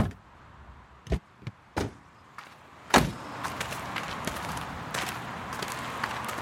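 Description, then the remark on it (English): A few sharp clicks and clunks of a door handle being grabbed, then a louder thud as the door swings open into a diner with light rustling and clatter. “Leah pulled back her hand and grabbed the door handle.”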